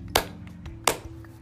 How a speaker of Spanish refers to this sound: Aplaudir means to clap. Vamos a aplaudir tres veces. We're going to clap three times.